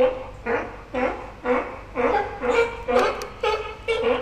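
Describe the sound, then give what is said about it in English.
An animal gives a run of about nine sharp barking alarm calls in a steady rhythm, roughly two per second, fairly loud, with no talking over them. “The alarm call, yeah?”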